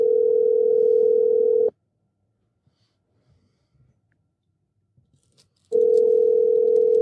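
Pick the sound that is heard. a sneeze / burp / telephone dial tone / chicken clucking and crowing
telephone dial tone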